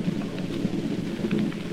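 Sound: distant thunder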